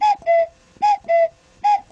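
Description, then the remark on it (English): A cuckoo clock chimes three times, each call a bright two-note 'cuck-oo' that drops from a higher tone to a lower one, evenly spaced and clear with no talking. “Where's the cuckoo sound?”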